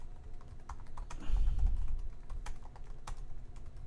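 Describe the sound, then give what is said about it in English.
Rapid, forceful keystrokes clatter on a keyboard in an irregular stream of sharp, fairly loud clicks, with a low rumbling thud midway through. No one speaks. “Hard typing.”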